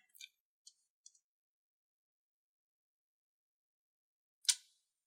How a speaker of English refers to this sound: Let's roll this damage up, baby. That's 8 dice.